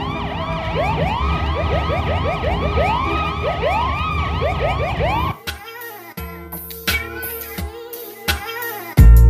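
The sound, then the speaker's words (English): An emergency vehicle siren wails in fast, repeating rising-and-falling sweeps over a low traffic rumble, then breaks into choppy, stuttering fragments with sharp clicks for the last few seconds. “Sirens up ahead, construction on the pavement.”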